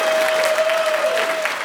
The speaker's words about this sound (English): Our special guests, a round of applause for Griffin Newman, Matt Singer, Allison Wilmore, and Dana Stevens.